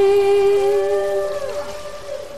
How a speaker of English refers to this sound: The record went gold and it introduced millions to the songs of the humpback whales.